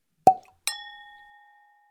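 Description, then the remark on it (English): Two wine glasses, one of Riesling and one of Pinot Grigio, clink together in a toast, a short dull tap followed by a brighter clink whose clear ringing tone lingers and fades over about a second, with no talking. “I'm going to drink this here, Riesling. You drink your Pinot Grigio. So excited. Cheers”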